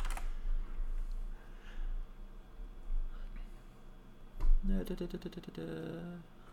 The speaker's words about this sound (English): If I don't edit out my keyboard, I am sorry, but I've got to see.